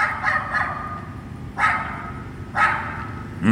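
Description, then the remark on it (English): Lenny the dog barks furiously outside a porthole window during a thunderstorm, in a string of sharp, harsh barks at uneven intervals over a steady low rumble, with no one talking. “From outside the porthole window of your room, you can hear Lenny barking furiously outside.”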